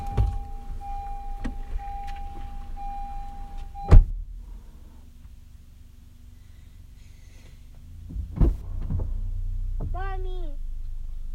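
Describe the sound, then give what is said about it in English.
A car engine rumbles low as a mother pulls the car in and parks it, with two sharp clunks along the way and a brief high chirping near the end. “Go run up to her after she parks the car and say, "We won, we won, we won."”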